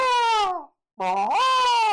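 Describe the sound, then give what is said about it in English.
A human voice imitates a bird call, made to a bird as a mirror is revealed to it, in two loud, tonal bursts separated by a brief pause; the first slides downward in pitch, the second swoops up and holds a bright, strained note. “I repeated the call and was constantly watching him on my monitor”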